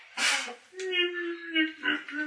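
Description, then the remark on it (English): A person vocally imitates a whimper: a breathy intake followed by a drawn-out, wavering, high-pitched whine that dips and rises again, moderately loud and unaccompanied. “He's sort of whimpering.”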